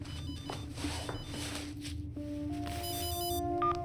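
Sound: cell phone ringtone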